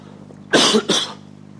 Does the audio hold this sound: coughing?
yes